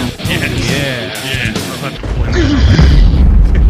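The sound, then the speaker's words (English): A loud, booming explosion sound effect with a heavy low-end rumble swells in after some brief voices and keeps roaring to the end. “And a big explosion.”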